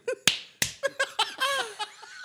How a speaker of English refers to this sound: Can you make it clap again?